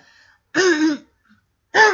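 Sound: cough into the microphone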